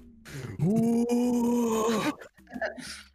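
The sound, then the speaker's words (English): A game player, in character, lets out a loud vocal imitation of a roar while looking at Ogden: one sustained, rough, throaty bellow lasting about a second and a half, then breaking off into brief breathy noises. “And I just look at Ogden and I roar.”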